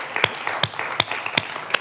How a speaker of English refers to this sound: We need to give thanks to the Lord. Okay, can we just give the Lord a clap and thank Him?